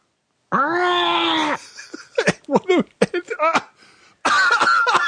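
A drawn-out, strained vocal groan gives way to a rapid run of harsh coughs, then a rough, throaty hack at the end. A loud coughing fit with no other sounds around it.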